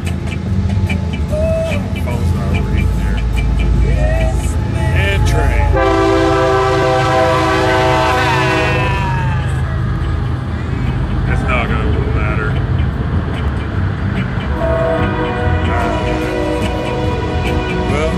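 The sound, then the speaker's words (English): A train rumbles loudly past, its horn blaring in a long sustained blast and then sounding again briefly near the end, with people's voices faintly audible beneath the noise. “Fucking train once again.”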